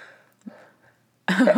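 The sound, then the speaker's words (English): A single sudden sneeze bursts out loud and harsh at the end, after a hushed stretch of faint breathy sounds and soft shuffling. “There's a sneeze on the podcast.”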